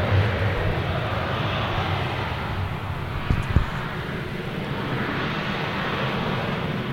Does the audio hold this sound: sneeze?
no